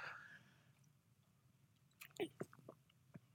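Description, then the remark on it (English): Quiet mouth sounds of someone sipping water: a brief soft squeak, a pause, then a cluster of wet clicks and gulps near the end. No one talks. “Excuse me, I'll just grab my water.”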